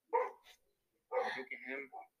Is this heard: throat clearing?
no